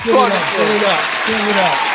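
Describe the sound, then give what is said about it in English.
Steady, dense applause fills the whole two seconds, with voices calling out over the clapping but no clear words. “You get applause, man. Applaud this man, bro.”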